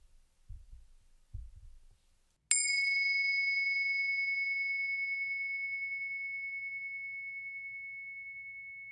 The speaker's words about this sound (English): First, let's settle in together with the sound of the bells.